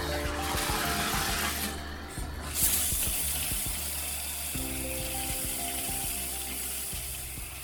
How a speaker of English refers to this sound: do you feel cleaner now, or do you feel like you're covered in all those microbes that came out of the shower head there? No, I do feel clean, and I am not bothered by what is coming out of the shower head.